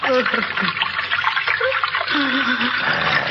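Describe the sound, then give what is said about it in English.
Water rushes strongly and steadily through the largest sewer, a dense continuous roar of heavy flow, with faint voice-like murmurs buried beneath it. “The water runs quite strongly here, doesn't it? The largest sewer of them all.”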